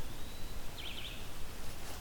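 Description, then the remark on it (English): A hooded warbler sings in its territory, one faint, brief run of clear, high whistled notes over a steady hiss of rustling background noise. No one speaks. “This makes it a four hooded warbler weekend, which is pretty interesting.”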